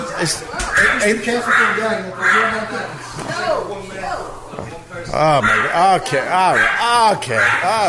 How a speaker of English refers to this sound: I want to strangle that dog, Mike. No, she's frightened.